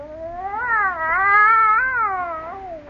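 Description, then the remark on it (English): A cat caterwauls in a quiet house, one long, wavering yowl that rises and falls in pitch for about three seconds, loud, with no other sounds around it. “It sounds huge, doesn't it?”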